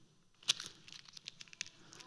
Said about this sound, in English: But suppose it's all crumpled up. Now you can't even see that it's a bill, and Ulysses' face is hiding. Who would like this $50 bill?